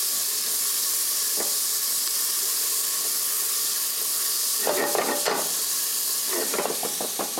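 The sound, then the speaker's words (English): Hot oil sizzles with a steady, bright hiss as the oil is tempered with whole spices, broken by bursts of sharper crackling and popping as the whole spices hit the pan, with a few quick spatters near the end. “We're tempering our oil with whole.”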